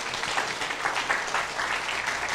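A crowd at a church service applauds a reader steadily, many hands clapping in a dense, continuous wash of sound at fairly even loudness throughout, with no voices standing out.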